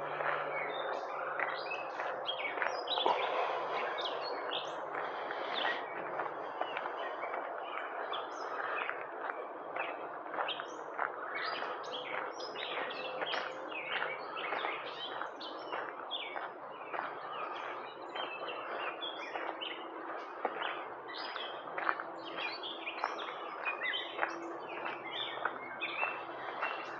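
A dense chorus of birds chirping and singing nonstop for nearly half a minute, many overlapping calls at a steady, lively level with a faint low hum underneath and no talking.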